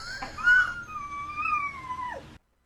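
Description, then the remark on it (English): A dog lets out one long howl that wavers up and down in a sing-song, almost melodic line resembling a pop song, before sliding downward and cutting off. No one talks over it. “If you own that dog, are you thrilled or super annoyed that every time it howls, it is...”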